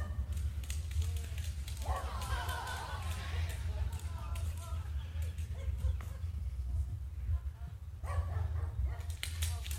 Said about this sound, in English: The Weather Channel just showed Stevie the Wonder Dog dancing in a puddle. Didn't show why. This video shows why.